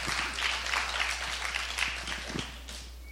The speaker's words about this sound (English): I got three people to clap.